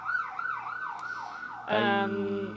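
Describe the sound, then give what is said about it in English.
An emergency vehicle siren wails in smooth rising-and-falling sweeps, then abruptly switches to a louder, harsher steady blare as it passes by, with no talking. “Yeah, when I was around 7, siren go by.”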